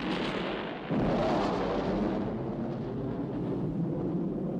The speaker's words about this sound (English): And then the plane just explodes.